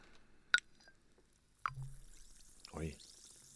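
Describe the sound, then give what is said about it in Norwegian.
An orange-scented effervescent vitamin C tablet plops into water with a sharp splash, followed by a steady, faint fizzing hiss as it dissolves, with a few more liquid bloops. “Det en brusetablett, så jeg putter den bare I vann, det så?”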